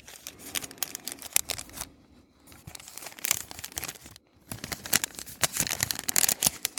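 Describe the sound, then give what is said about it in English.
Stiff parchment paper from inside the packaging of shatter crinkles and rustles in dense, irregular bursts of crackling, with two brief pauses where the handling stops before resuming. “That's the parchment paper that's inside the packaging.”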